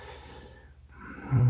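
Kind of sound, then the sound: human body sound, someone sniffing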